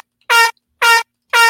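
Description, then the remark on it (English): Three loud, harsh air horn blasts, each lasting about a quarter second, evenly spaced with short silent gaps between them, with a bright, brassy tone full of overtones. “But let's sound the fraudulent alarm here.”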